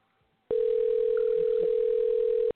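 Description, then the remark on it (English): A single steady ringback tone sounds through a phone line for about two seconds, loud and clear with no talking, as an outgoing call to a friend rings on the other end. “And I'm calling another friend. So let's see if she's up or...”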